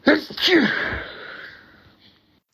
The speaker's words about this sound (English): Oh, I'm going to sneeze now.